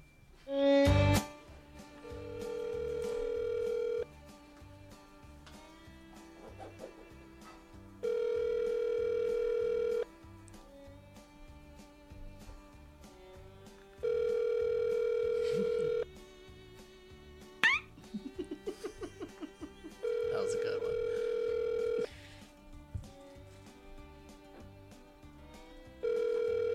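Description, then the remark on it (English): An outgoing phone call to Rob Fee rings out unanswered: a steady electronic ringback tone repeats in long, evenly spaced bursts with pauses between, fairly loud and clear, with faint background noise and no one picking up. “Rob's not answering the phone.”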